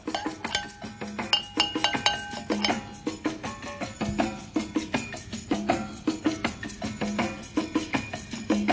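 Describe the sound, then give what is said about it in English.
Jam Jar Sweet Red Blend wine is poured into a glass, with a steady splashing stream and frequent bright glassy clinks and ringing tones throughout, fairly loud and with no talking. “Let me pour a glass.”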